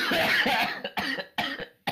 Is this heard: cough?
yes